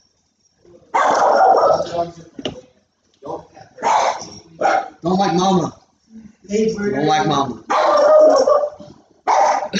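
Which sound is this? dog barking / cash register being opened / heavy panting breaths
dog barking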